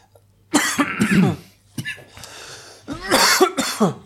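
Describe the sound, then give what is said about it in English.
A loud bout of harsh coughing in two clusters separated by a short pause, with raspy throat clearing in between and no talking. “I cannot get rid of this fucking cough.”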